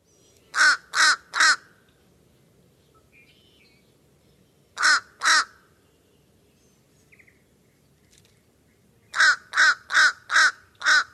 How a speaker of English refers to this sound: Here's the fish crow's version of the caw, caw, caw of a crow, and it sounds like its nose is plugged. It sounds like it has a stuffy nose. So this is fish crow, caw, caw, caw.